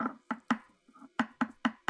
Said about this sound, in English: Whoever's knocking. Stop it. Stop it.